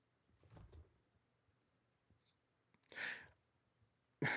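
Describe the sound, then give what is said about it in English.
A heavy spiked door is let down slowly and grinds downward: a low rumble, a longer scraping mechanical whir, then an abrupt loud clunk cutting in at the end, with no voices. “Now, Judge, you just begin to let this door down slow onto me.”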